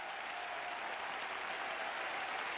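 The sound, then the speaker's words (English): An audience claps steadily, a dense, continuous wash of many hands with no clear rhythm, holding an even, fairly loud level throughout without any voices standing out. “If you believe that, I want you to clap your hands and tell every devil in hell how much you do believe that.”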